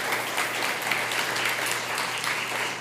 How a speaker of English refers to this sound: The first family here, you paid for all of their flights, all of their relocation fees. The second family here, you paid for them as well. And come on, can we just give it up a round of applause? That's wonderful.